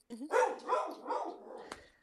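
A dog barks three times in quick succession, moderately loud, with the barks trailing off into a softer, whiny tail.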